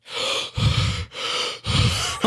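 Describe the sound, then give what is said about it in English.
Heavy, deep breathing, with four long alternating breaths in and out, each a loud, airy rush; the exhales are rougher with a low rumble. A person on a trail breathes deeply to keep from passing out after a bee sting. “I'm deep breathing.”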